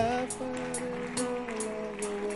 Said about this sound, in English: Oh, keep clapping for them.